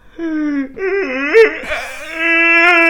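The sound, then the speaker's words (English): A person vocally imitates a dying seagull with a strained, wavering wail that bends up and down in pitch, breaks into a sharp squawk midway, then holds a long, steady cry. “He takes his bandages off, and we hear this sound that sounds like a seagull being like sort of slowly stabbed to death.”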